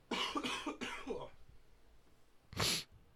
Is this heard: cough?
yes